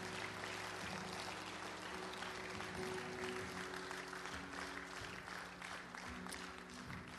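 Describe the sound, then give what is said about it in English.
A church audience applauds God together, a steady wash of many hands clapping at once, dense and sustained throughout with a faint low hum underneath. “So could you guys just give a hand clap to the one who's worthy?”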